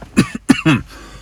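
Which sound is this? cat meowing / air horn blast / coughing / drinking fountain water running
coughing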